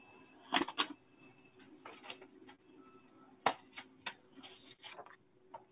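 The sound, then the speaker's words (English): An HP printer runs and prints out a paper ballot: a steady low mechanical hum beneath irregular sharp clacks and short rattling bursts, with no voices. “And now on the HP printer, it is going to print out the ballot.”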